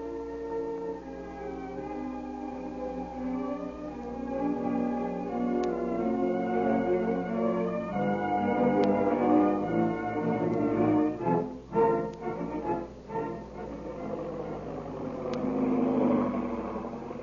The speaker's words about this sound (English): At that very moment, the big black seaplane is heard over the mysterious plantation house, circling for a landing. And gracefully skids to a stop on the beach.